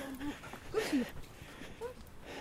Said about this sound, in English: Hey, doggy. Hello.